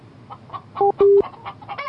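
Chickens cluck in a quick, uneven series of short calls, with two louder, drawn-out squawks in the middle and no talking.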